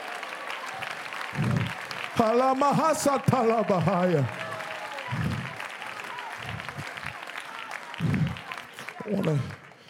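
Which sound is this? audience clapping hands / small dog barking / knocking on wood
audience clapping hands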